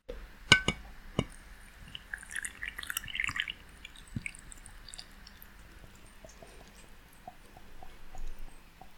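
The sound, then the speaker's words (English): Water is poured onto tereré leaves in a cup, filling it to the top, with a couple of sharp clinks at the start, a brief gurgling splash, then scattered soft drips and quiet fizzing as bubbles form while the water settles. Fairly quiet, with no talking. “Okay, I poured the water all the way to the top of the cup, and now it's bubbling.”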